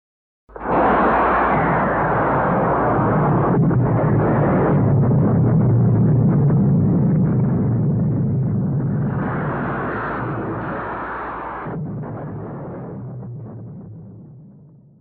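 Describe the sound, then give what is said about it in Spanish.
A loud, continuous roar of British Hawker Hunter fighter jets and the explosions of the bombs they drop on the government headquarters building starts abruptly and rumbles heavily for about fifteen seconds, surging in waves before slowly fading. No voices are heard. “Y hora y media más tarde, aviones de combate británicos, Hawker Hunter, lanzaron las primeras bombas sobre el edificio.”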